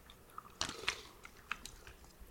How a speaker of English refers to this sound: I poured it out onto rocks for us, so it's nice and cold. What do you say we sip away? Yeah, that's a good idea.